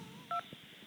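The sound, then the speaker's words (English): A single touch-tone phone keypad press while navigating the Coffee Sprudgecast hotline phone menu: one short, steady dual-pitched beep that stands out loudly against a faint background hiss, with no talking. “For a question about accounting, please press 3.”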